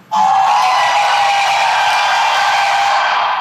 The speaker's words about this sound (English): So today we're going to highlight none other than Roz Brewer, the CEO of Walgreens. Let's give her a round of applause, man.